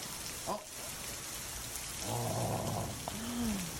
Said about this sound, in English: Just thunder and lightning. I'm like, whoo, look at that one. I'm so excited. I mean, look at it. It's big. It's heavy rain.